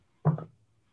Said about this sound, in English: All right. 2 dice. Here we go.